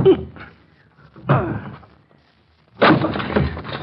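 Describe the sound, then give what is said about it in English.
Heavy wooden thuds as a locked study door is forced open: two or three loud blows at uneven intervals, the last one bursting into a longer crash with rattling debris. “I'm going to break in the door.”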